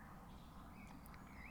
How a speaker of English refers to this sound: I think there's something to be said for this kind of atmosphere. There's a lot of just like birds tweeting and like rustling and everything.